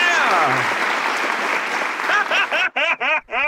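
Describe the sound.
A burst of loud canned applause with some cheering fills the first couple of seconds, then fades as clapping tapers into several short voiced whoops or cheers near the end.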